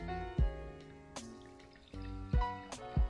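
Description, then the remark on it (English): A pale, rusty red German Pinot Noir pours from the bottle into a glass in short gurgling bursts, with a few soft knocks and a ringing, tonal resonance. The pouring is fairly quiet, with no talking. “It's almost pouring out a little like rusty red colored.”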